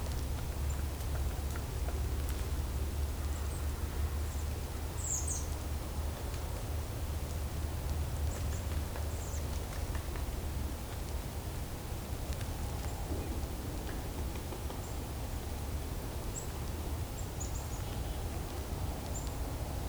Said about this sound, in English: Black-capped chickadee call. So this is a mixed flock. Crows are kind of a separate flock, but this mixed flock is robins, chickadees, kinglets, woodpeckers. And creepers.